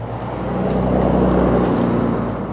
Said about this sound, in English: The street in front of Arnie's Motorcycles is crawling with trucks. There are semis hauling water and muddy pickup trucks carrying oil field workers.